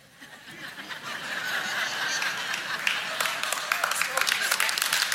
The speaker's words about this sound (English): Just know I love you. And they're clapping because they love you.